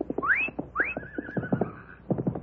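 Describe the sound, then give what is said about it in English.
A horse neighs loudly, two rising cries followed by a long quavering whinny, while galloping hoofbeats thud steadily as the horse turns and comes back. “Gila Sunshine has turned. He's coming back.”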